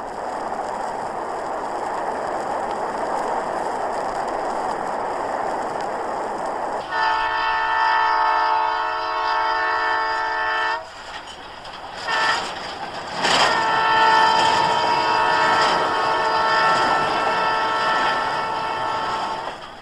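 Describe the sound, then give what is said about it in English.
A train rumbles steadily along the tracks, then a loud, sustained horn blares for several seconds, followed by screeching, clanking wheels and a second burst of horn as it passes by. “The long trains loaded with prairie grain bound for Europe belong to the past.”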